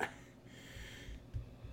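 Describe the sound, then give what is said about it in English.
A person clears their throat with a short, rough rasp, followed by a raspy, breathy exhale. It is fairly soft, with no talking. “Gotta make sure I can clear my throat.”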